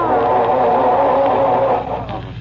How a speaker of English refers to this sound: I'm trying to get this dad-ratted car started, if you must know.